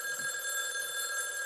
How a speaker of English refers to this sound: The phone rings.